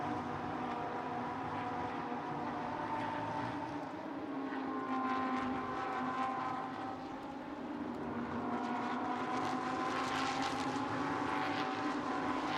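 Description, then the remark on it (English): Several race car engines roar together in a loud, continuous drone, their pitch rising and falling as a group of cars battling for position accelerates up a hill. No one speaks. “Heading up the hill one more time. There's a group of cars here battling for position.”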